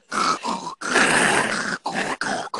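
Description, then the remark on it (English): A person vocally imitates two people snoring in sync, with rough, raspy snorts: two short bursts, a long drawn-out rattle, then three more quick snorts, fairly loud with no talking. “But this time, they're both snoring, and they're in sync.”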